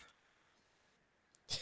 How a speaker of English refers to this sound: New listener challenge. Count all the sneezes. And if you listen... Sneezes or nose blows? Sneezes, nose blows.